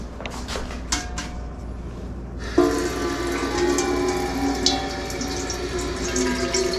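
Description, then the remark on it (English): Tap water gushes into a big pot, which is only partly filled, for boiling, after a few light knocks, a steady rushing stream that starts abruptly and keeps filling with a hollow metallic resonance until the end. “And obviously, I'm not going to fill this entire pot up.”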